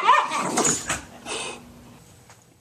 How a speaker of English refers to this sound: Here's another sound from my morning. Dog play or fighting.